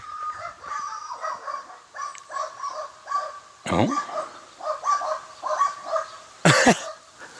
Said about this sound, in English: There's another dog. I love the fact that I point that out to you. There's another dog, everybody.